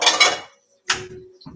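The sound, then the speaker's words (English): Ripe avocado slices, taken out with a large serving spoon, being set down on a plate: two short bursts of light clinking and scraping against crockery, with a quiet pause between them and a faint third clink at the end. “So we're going to take these out and put them on a plate.”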